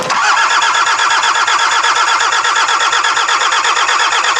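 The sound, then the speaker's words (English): A car sitting in a pile of rubble is started, with a loud, rapid rhythmic churning from the starter and motor that stays steady and continuous for a few seconds. No voices are heard. “The car's basically sitting in a pile of rubble. Oh, is this it? Right, this is it. I'm gonna give it a go.”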